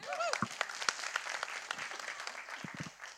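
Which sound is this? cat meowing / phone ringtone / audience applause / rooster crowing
audience applause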